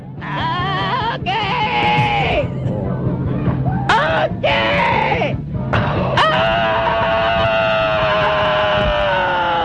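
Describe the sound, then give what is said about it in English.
A loud, chaotic cacophony of screaming, with several shrill, wavering wails overlapping and cutting in and out over a dense, noisy background, continuous for the whole stretch; the opening of a radio program as the DJ comes back from a break, around 2005. “This is how screaming. He starts his show. It's audio mayhem.”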